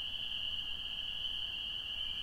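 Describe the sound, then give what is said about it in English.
An American toad's trilling call as the stars come out: one long, unbroken high-pitched trill held at an even level for the whole clip, over a soft low rumble, with no talking. “It was trilling a minute ago. It's an American toad.”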